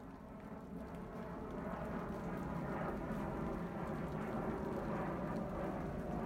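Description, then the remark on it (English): An airplane passes overhead, a steady broad low roar that swells slightly after the first second and then holds at an even level throughout, with no voices. “There's an airplane going right over us.”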